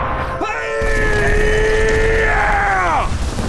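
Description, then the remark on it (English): A loud, shrill whine of incoming rockets holds a steady pitch for a couple of seconds, then bends sharply downward as it ends, over a low rumbling background. “Christ! Rockets! Down, everybody down!”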